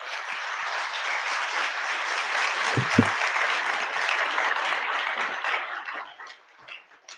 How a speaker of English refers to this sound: All right. Let's give one more big round of applause for our speakers.